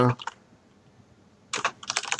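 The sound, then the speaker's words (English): Clacky keystrokes on a mechanical keyboard with Cherry MX switches, crisp: a short flurry of taps, a pause of over a second, then a faster run of typing resumes. “this was unbelievably helpful for me when I was trying to decide what sort of a mechanical keyboard I wanted.”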